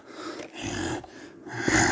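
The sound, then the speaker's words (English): A creature runs out, growling and grunting at a man in rough, breathy bursts, fairly loud, with short snorting pauses between the guttural sounds and no one talking. “growling and grunting at him.”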